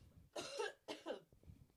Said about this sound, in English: It's like one coughs and the other coughs. Yeah. Oh, my goodness. I've had this cough for like literally over a month now